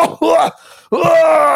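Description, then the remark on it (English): A voice mimics a man straining and failing to hit the high notes of a song, in two loud, raspy bursts separated by a brief breath, sounding choked and on the verge of a cough. “It almost sounded like he was like about to start coughing any minute.”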